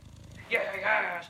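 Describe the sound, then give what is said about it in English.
A cat purrs softly in a low, steady rumble while being petted, with a louder breathy, rustling burst over it partway through that lasts most of the second. “There's very little that makes me feel better than that, than petting my cat.”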